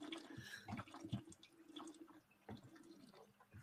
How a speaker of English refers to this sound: And I'm gonna drink some water. They're probably a good call. That's a jug right there. Look at that thing.